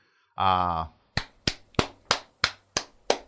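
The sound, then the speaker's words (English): A short voiced exclamation, then seven crisp hand claps in a quick, steady rhythm, fairly loud, ending abruptly: show hosts clapping to celebrate reaching the end of season three. “We don't clap on the show generally for...”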